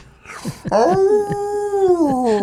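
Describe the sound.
A person imitates the howl of Charlie, a 55.6-pound black and tan coonhound from the Big Dog Ranch, holding one loud, drawn-out baying note that sags slightly in pitch, preceded by a few short breathy sounds.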